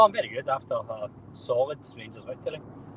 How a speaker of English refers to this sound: If I'm speaking more nonsense than usual, it's because I'm driving and I've already had some constructive criticism on my driving today, so my priority is getting us back along the M8